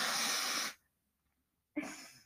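human body sound, loud nose blowing

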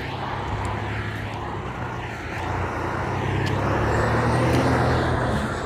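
vehicle, semi-truck driving past

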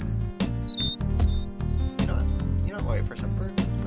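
bird, birds chirping

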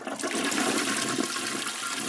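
household object, toilet flushing

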